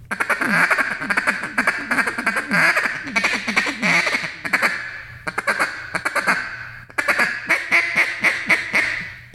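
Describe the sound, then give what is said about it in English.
Rapid, rattling quacks from an Icebreaker double reed (reed and a half) duck call blown in a fast feed-chatter rhythm, several bursts separated by brief pauses, loud with no talking. “So on this double reed, on the one that we designed, the icebreaker, you can blow into it and you can actually hear and do a ka ka ka ka ka ka ka ka and get a really good feed out of it, and it's got rattle in it.”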